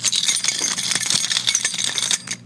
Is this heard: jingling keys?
yes